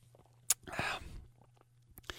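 A sharp click, then a wet slurp as someone takes a sip of Garage Classic Light Beer, followed by a quiet swallow and a couple of faint clicks.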